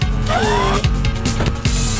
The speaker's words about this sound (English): That sounds like Cartman driving around in a car. It's because it is. What year was this? 2000.